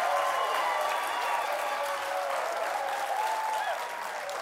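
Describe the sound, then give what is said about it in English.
A studio audience at The Late Show applauds loudly and steadily as Shaquille O'Neal is welcomed, a dense wash of clapping with a few faint cheers mixed in, continuing without a break for the whole stretch and no talking over it. “The crowd kind of scared me.”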